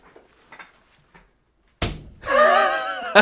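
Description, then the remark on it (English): A hand slaps hard against a wall map of the USA in one loud thump, landing on the Heartland region, followed by a drawn-out vocal exclamation and a second quick smack near the end. “What you can't see, listeners, is … slapping the wall where a map is”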